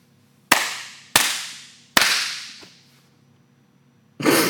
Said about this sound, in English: All right, so we're recording right now, and then I'll do the three clap thing